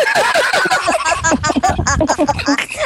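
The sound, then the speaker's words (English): A voice imitates the Pac-Man death sound, a string of warbling, wobbly vocal tones that bend and slide over about three seconds, fairly loud, with other voices overlapping throughout. “The Pac-Man, when Pac-Man dies.”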